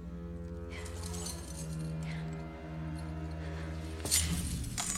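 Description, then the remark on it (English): Keys jingle and clink briefly in a quick burst near the end as they are handed over, over a steady low electrical hum, with faint metallic rattles earlier on. “Now you give me those keys.”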